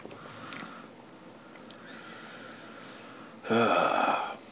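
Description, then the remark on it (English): A few soft slurping sips of beer, followed by a louder, breathy exhale or satisfied sigh near the end. No speech. “Let me give it one more quick sip.”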